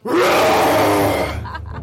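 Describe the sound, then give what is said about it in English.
A person in an interview lets out a single loud, throaty roar imitating a wild animal, sustained and rough for over a second before trailing off into a breathy fading tail. “Can you do your best roar for me?”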